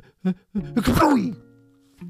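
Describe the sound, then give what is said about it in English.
A storyteller's voice acts out a dog character's sneeze that he tried to hold in: a couple of short, rising breathy catches, then a loud explosive burst that trails off into a falling, drawn-out vocal tone, followed by a brief quiet sound. “And he said a weird word when the sneeze exploded out of him.”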